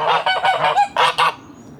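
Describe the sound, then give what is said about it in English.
Domestic geese on a farm, mainly Emdens along with Charlie, a Toulouse cross, and Billy, an American Pomeranian gander, honk loudly in a rapid, overlapping series of about six raspy, nasal calls, then the noise drops away into quiet at the end. “And Billy, who's the gander, he's an American Pomeranian.”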